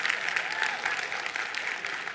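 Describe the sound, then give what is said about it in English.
A thin, scattered round of audience clapping, steady but modest in volume, with irregular hand claps blending into a brief patter that never builds into full applause. “Now that's an embarrassing clap.”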